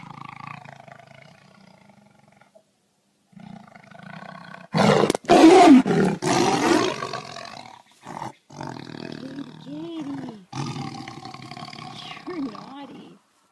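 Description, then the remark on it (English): A tiger lets out a loud, rough roar lasting a few seconds, broken into surging bursts. Quieter voice-like sounds come before it, and a fainter rumbling tail follows. “you want RP Poe to see the tiger?”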